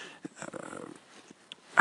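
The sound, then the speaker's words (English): A dog named Louie sniffs the snowy ground, seemingly at bird tracks, on an estate in Glenmire, Ireland, on 3 March 2018 after the Beast from the East: a quick flurry of short snuffling breaths followed by a few scattered sniffs and a sharper burst at the end. “Dog Louie sniffing like mad.”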